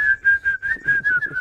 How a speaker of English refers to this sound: You definitely whistle when you're doing this.